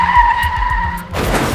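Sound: car tires skidding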